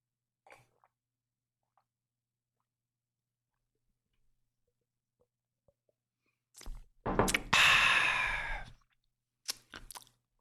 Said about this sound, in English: Okay, I'm just going to take my nice little sip.